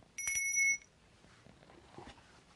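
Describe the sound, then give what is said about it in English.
A bell is struck once, loud, giving a bright, piercing ring that holds for about half a second before cutting off, leaving only faint background noise. “We'll ring the real bell.”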